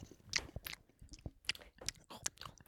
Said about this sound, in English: Okay, so here we go. We're all in the car eating hot dogs.